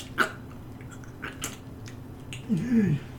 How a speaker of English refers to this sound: And it just sits there, slowly chewing on the jerky.